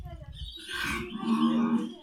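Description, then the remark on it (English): A koala, just pulled out of a pool by its rescuers, lets out a loud, deep growl, starting as a low guttural rumble and rising into a drawn-out, hoarse bellowing roar, forceful for about two seconds. “They're fucking like growl really loud.”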